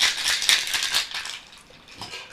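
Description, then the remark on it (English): Ice rattles hard inside a cocktail shaker holding gin or vodka and cranberry juice, in quick, rhythmic bursts of bright, gritty clatter. The shaking is loud at first, then eases and grows lighter toward the end. “Cap it. Let me just cap it real quick. Mix it.”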